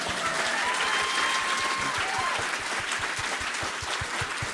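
Steady audience applause fills the whole stretch, a dense rapid patter of many hands clapping at an even level, with a faint whistle-like tone briefly rising above it.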